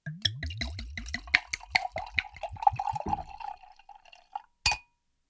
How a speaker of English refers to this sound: So, my friends, here we are, and we're going to pour some wine